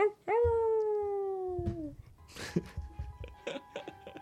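A single long, loud howl starts abruptly and slides slowly downward in pitch for about a second and a half, followed by scattered clatter and shuffling noises.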